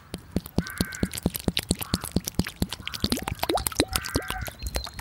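Water pours from a container in a rapid run of close, irregular splashes and drips, with a few rising gurgles as it flows, while crows caw in the background.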